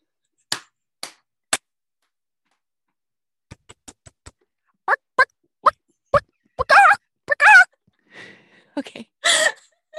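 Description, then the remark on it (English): Several sharp hand claps, then a few quick taps, then more claps, followed by short bursts of a person's voice imitating a chicken clucking, fairly loud. “I'm going to clap 5 times and then you're going to clap 5 times and then make a chicken noise.”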